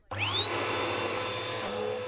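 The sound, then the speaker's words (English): A vacuum cleaner switches on and whines up to a steady, loud roar with a rising high-pitched tone, running continuously with no talking. “You are going to hear from my lawyer. Wait, you have a lawyer? It's a vacuum.”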